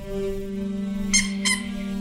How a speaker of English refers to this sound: It's a very squeaky donut. We are trying to be instructed on how to end this threat to all humanity, and you're eating a squeaky donut?